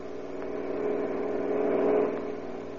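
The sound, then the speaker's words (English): Car engines drone steadily on a wide cement highway leading out of Olympia, Washington, in the early morning, one vehicle swelling louder as it speeds past and then fading, with a continuous hum of traffic underneath and no voices. “On the wide cement highway leading out of Olympia, Washington, two boys stand, thumbs pointed south in the familiar gesture of the hitchhiker, and watch the steady line of cars as they speed by.”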